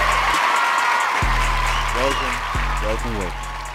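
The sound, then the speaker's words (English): An audience claps in a steady, dense wash of applause throughout, with a low humming tone and snatches of voice running underneath. “You're already clapping.”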